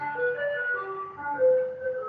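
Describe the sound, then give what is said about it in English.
A tinkling ice cream truck jingle plays a steady melody of bright repeated notes, moderately loud and heard from outdoors as the vehicle passes by, with no voices over it. “It's an ice cream truck or whatever.”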